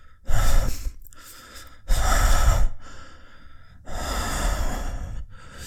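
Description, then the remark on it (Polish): A person imitates heavy panting, as the character Falander panting, with three loud, harsh breaths, slow and uneven, each a long rasping huff, with brief quiet gaps between them and no talking. “Dajesz mu to, widzisz, że falander sapie.”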